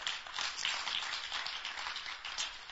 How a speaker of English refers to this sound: Clap for our brother.